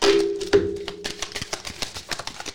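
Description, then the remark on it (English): A deck of cards being shuffled, a quick burst of riffling followed by a rapid patter of crisp, papery clicks that gradually thins out, with no one talking. “Last shuffle.”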